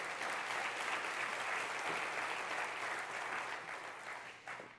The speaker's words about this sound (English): Do you know how blessed we are to have an amazing student ministry team and an awesome youth pastor? Let's give them a big round of applause too.